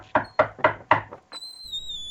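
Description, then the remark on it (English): Four firm, evenly spaced, loud knocks on a door, with a softer fifth tap, followed by a steady high-pitched squeak or whistle-like tone that lingers. “I'm going to knock on the door here.”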